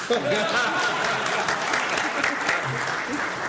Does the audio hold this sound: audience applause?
yes